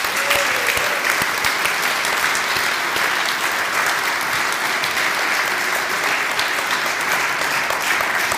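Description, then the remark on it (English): A church audience applauds steadily for a woman being thanked, a dense and sustained wash of many hands clapping, holding an even loudness throughout with no talking on top. “Let's, you can give her a round of applause.”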